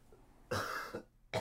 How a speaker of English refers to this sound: I might cough into the side of this couch. Could be full of pathogens.